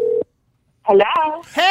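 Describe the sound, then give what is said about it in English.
A brief, steady telephone tone from a cell phone call sounds clearly at the start, then cuts off into a short silence before a voice begins speaking. “You want me to call her from my cell phone? Go ahead and do it right now.”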